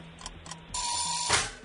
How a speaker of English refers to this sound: Panic mode. It's the timer.